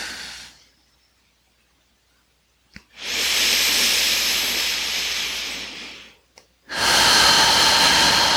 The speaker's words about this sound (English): Breathing down into the belly.